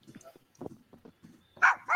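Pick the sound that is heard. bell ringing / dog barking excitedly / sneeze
dog barking excitedly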